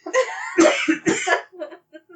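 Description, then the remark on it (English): A loud run of harsh coughs triggered by laughing, mixed with breathy laughter, several bursts in quick succession that taper into softer, shorter coughs at the end. “Do you get the laugh coughs? I get the laugh coughs.”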